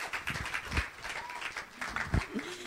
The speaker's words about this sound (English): Give her a big clap. She's done an amazing job.